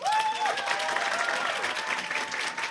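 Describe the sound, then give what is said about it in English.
An audience votes by applause on whether Xavier's is the worst educational system in a fictional universe, clapping in a steady, dense patter for a few seconds, with scattered cheers and whoops rising over the applause before it continues evenly to the end. “Who thinks Xavier's is the worst educational system as a fictional universe, by round of applause.”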